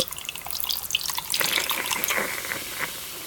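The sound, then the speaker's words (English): A Hedy Lamarr's dissolvable soda pop tablet fizzes steadily in water, a dense crackling hiss of tiny bursting bubbles that swells fuller and busier about halfway through, then eases slightly toward the end. No voices. “Let the tablet take a dip for a refreshing sip.”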